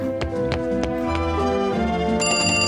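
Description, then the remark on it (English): A telephone at the Krusty Krab restaurant rings with bright, repeated bell strikes, fairly loud, layered over sustained tonal background music, with no voices present. “All you have to do is answer the phone.”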